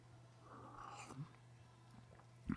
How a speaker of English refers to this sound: I have a sip of coffee here.